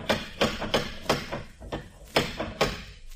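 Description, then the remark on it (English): A door knocker, one of an old house's 1906 conveniences, raps repeatedly on a door: about eight loud metallic knocks in uneven clusters, sharp, with a hollow ring after each strike and no talking. “Yes, all 1906 conveniences, including a door knocker. Well, give it a blast”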